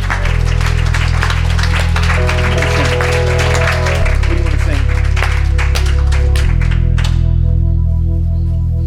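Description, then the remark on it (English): An audience claps steadily and densely for several seconds as a clap offering to the Lord, the applause layered over loud, sustained organ or keyboard chords that change pitch a few times. “Give a clap offer to the Lord.”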